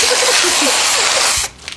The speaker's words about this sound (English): You wouldn't like spray whip. You wouldn't spray whipped cream on me.